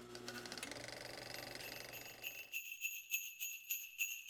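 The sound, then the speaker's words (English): Sleigh bells jingle in a steady, bright rhythm, shaken roughly three times a second, after a dense, whirring clatter that fills the first half and then cuts away. “With that out of the way, roll the film, but make it jingle bells or sleigh bells instead of the film roll”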